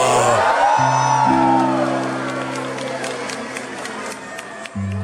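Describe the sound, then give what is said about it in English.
A large outdoor crowd at a 2019 Christmas tree lighting lets out a sustained collective "whoa" of amazement as the lights of the tree and building are switched on, cheers and whoops rising over a dense, roaring murmur with a low steady hum underneath. “He flips the switch, everything, all the lights of the building and the tree, and the crowd is like, whoa!”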